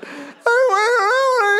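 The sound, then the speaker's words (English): A male audience member lets out a loud, sustained wail with a wavering pitch, like a barking seal's drawn-out cry, following a brief softer breathy sound; the voice imitates a seal. “Has anyone ever told you you sound like a seal?”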